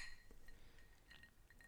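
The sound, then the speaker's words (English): Cocktail glasses clink together in a toast, a few light, bright taps with a faint ringing tone, fairly quiet, with no talking. “This would definitely be a cocktail that I would order at a nice restaurant. Cheers.”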